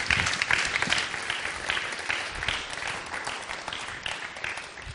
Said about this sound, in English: Thank you. Thank you. Give him a massive clap.